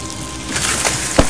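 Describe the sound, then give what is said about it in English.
A large tree falls and crashes to the ground in fog, with a rush of cracking and splintering wood building to one sharp, heavy impact near the end. No voices are heard. “As I was second-guessing myself, a loud thundering boom echoed in front. A large tree was falling. It split the fog as it crashed to the ground.”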